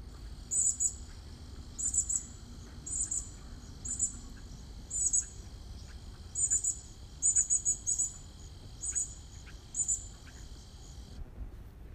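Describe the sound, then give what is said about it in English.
A juvenile cardinal gives repeated short, high chirps in small irregular clusters, clear, over a steady insect drone and faint low background rumble. “And let's try a juvenile call.”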